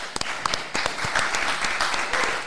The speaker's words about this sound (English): Round of applause.